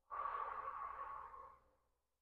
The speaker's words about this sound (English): Just be as still as possible and just focus on your breath. Continue breathing in through the nose and exhale out of the mouth.